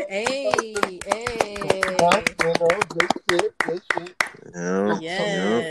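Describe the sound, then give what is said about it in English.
Quick, sharp hand claps celebrating a 56-pound weight loss ring out in a rapid, slightly uneven burst over several seconds, with people talking and cheering loudly underneath. “Clap it up.”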